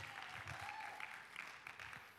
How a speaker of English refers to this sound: put your hands together and clap and shout and do a sundry of crazy ideas, because Jesus saved you. You can clap better than that for what Jesus did. I mean, there may be 100-something people here, but you can clap at least like you almost are happy.